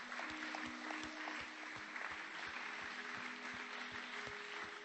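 An audience claps steadily, a dense, even wash of applause lasting about five seconds, with a low sustained hum and regular soft thuds beneath it.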